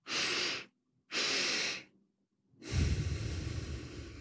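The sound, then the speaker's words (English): A person demonstrates a physiological sigh breathing technique: two sharp, airy inhales separated by a brief pause, then a long, breathy exhale. No one speaks. “Another powerful breathing technique is what's known as the physiological sigh, where you inhale twice before exhaling.”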